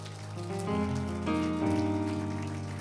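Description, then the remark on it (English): A church audience claps steadily to the Lord during a Pentecost service, a dense wash of hand claps over sustained organ or keyboard chords that shift pitch a few times, holding at an even, moderate loudness throughout. “And would you just clap your hands to the Lord for a moment?”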